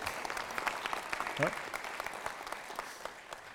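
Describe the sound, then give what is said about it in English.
An audience applauds two Country Fire Authority (CFA) members with a steady, dense patter of clapping that holds at a moderate level throughout, with a brief vocal whoop rising out of it partway through. “Give them a round of applause just because...”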